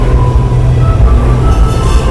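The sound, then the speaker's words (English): An E subway train rumbles loudly and steadily as it rolls into a station, a deep continuous roar with faint metallic tonal whines on top. No one speaks. “Here is another E.”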